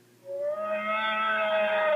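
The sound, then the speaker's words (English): The Dewback roar sound effect from Star Wars: A New Hope, a fictional reptile creature: one long, droning bellow with a rich, whale-like harmonic tone that starts abruptly and holds loud and steady for about two seconds, with no voices. “So for number four, sticking with New Hope is the Dewback sound.”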